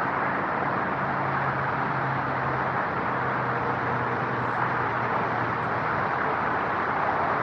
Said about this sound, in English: But I guess that means that this mic isn't the best if it's picking up all that traffic. I don't know. Let me see if open it a little closer. Cancels out some of the traffic.